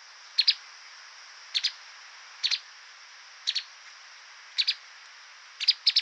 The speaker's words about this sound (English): Next up is a streaked spider hunter. This bird was recorded in Thailand.